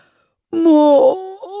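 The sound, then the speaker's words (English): After a brief silence, a boy yawns into the sleeve of his school jumper in the morning: a single loud, drawn-out exaggerated yawn, a long moaning stretch that sags and then trails off into a softer groan. “Arthur appeared, straightening his glasses and yawning into the sleeve of his school jumper.”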